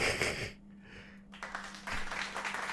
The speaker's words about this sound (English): Okay, so why, I mean, why are you having the audience clap?